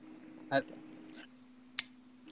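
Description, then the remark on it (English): Two separate clicks over a low steady hum: a softer, slightly ringing one first, then a sharp, crisp tap about a second later, a computer mouse being clicked while browsing the website Illegal Drip. “as I'm clicking through your website, you know, Illegal Drip,”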